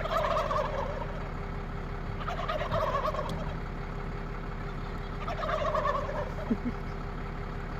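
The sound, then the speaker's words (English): Wild turkeys gobble in response to a noise in three rapid, rattling bursts spaced a couple of seconds apart, loud and clear over a steady low droning hum, with no one speaking. “Yep, make any little noise and they'll start gobbling.”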